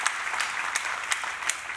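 A crowd claps steadily, a dense wash of many hands with a few sharper claps standing out, filling the space at moderate loudness with no voices.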